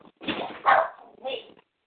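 A dog barks three times in close succession, fairly loud, with a short pause before the last bark; no talking.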